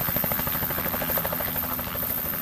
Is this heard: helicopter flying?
yes